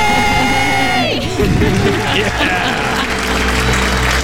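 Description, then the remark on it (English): Loud, excited shouting and cheering from a small group doing their debt-free scream, shouting 'We're debt-free!' after a countdown, voices overlapping in a sustained celebratory burst with whoops, energetic throughout. “They planned their debt-free scream together.”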